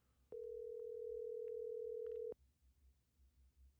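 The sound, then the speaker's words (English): A phone ringback tone sounds once while someone calls a person who is not answering, a loud, steady electronic hum lasting about two seconds, then cuts off, leaving only faint background noise. “Oh, we have a ringtone or a dial buzz, whatever.”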